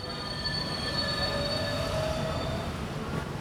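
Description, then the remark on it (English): An elevated 7 subway train passes near Roosevelt Avenue station in Jackson Heights, its steady low roar layered with high, sustained metallic wheel squeals that hold throughout, with no voices present. “Near Roosevelt Avenue train station in Jackson Heights, there's a building so close to the 7 that it shakes every time a train goes by.”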